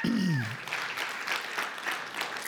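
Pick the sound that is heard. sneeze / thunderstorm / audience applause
audience applause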